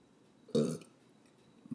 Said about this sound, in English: Sweetie. What, Mom? What did I say about that? That it's rude to burp.